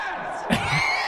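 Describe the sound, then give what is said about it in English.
A dense stadium crowd roars steadily, and partway through a loud, drawn-out group shout swells up out of the din, the start of a slow "Go Pats" chant. “I've heard of slow claps, but never slow chants.”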